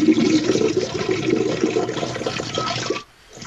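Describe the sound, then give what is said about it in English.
A broken motel toilet flushes loudly, a steady rushing gurgle of water for about three seconds before it cuts off abruptly into near silence. No one speaks. “The toilet still works, though. It's broke, but it works.”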